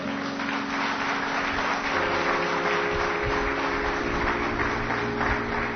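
Steady applause from an audience at a talk fills the whole clip, a dense, even patter of many hands clapping at once, with a faint low hum running underneath.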